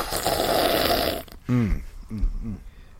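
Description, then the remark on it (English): A plastic bottle of water is squeezed in place of a soda, making about a second of rough, hissing crackle. Then come three short, throaty gurgling bursts with a falling pitch, moderately loud, with no talking. “I didn't have a soda, so I had to squeeze my slurp. Bottle of water.”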